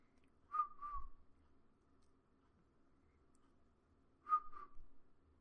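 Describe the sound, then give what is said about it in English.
Someone whistles two short bursts, each a pair of quick, breathy notes, with a pause of about three seconds between them over a faint low hum. “I'm trying not to fail attempts at this whistle, but it's so great.”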